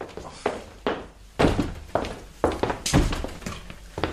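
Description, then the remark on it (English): Someone bangs on a door with about six heavy, evenly spaced thuds, roughly two per second, loud, with no voices. “Someone's banging on the door.”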